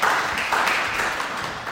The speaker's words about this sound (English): Sit down, guys. You were fantastic. Give them a clap.